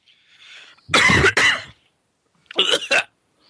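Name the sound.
coughing fit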